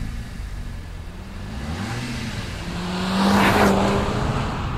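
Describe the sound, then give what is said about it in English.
A Seat Leon Cupra road car's engine revs up hard as it accelerates away, its pitch climbing through the gears to a loud, roaring peak near the end. There is no talking. “I think we should go for a burn.”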